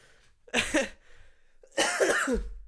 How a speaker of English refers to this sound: Can you stop dying? I'm trying not to. It's one of those season of obligation coughs. Bloody season of obligation.